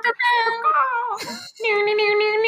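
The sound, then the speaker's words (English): A person voices a drawn-out, whiny meow in imitation of a cat, followed by another sustained, steady nasal tone. The vocalizing is loud, with no ordinary speech. “One of you just meowed.”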